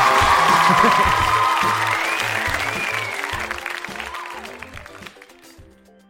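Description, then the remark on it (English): Loud audience applause with scattered cheers for the show Love It or Leave It, a dense wash of clapping that gradually thins and fades over about six seconds. “Everybody applaud.”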